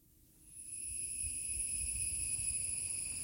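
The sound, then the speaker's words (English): A chorus of cicadas in Kerala swells in within the first second, then holds as a steady, shrill, high-pitched drone, with a low rumble underneath and no voices. “The sound of the cicadas grounded me.”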